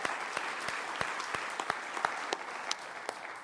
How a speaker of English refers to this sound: They got our tech working wonderfully this morning. Let's applaud them for what they do.